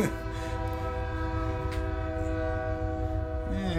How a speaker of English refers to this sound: Oh, boy. You got another train coming.